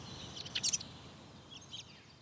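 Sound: crow calling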